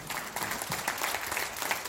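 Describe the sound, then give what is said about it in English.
Steady applause from an audience at a live music performance, just before a song is played on stage, a dense patter of many hands clapping at an even level for a couple of seconds, with no voices standing out. “People clapped and I launched into it.”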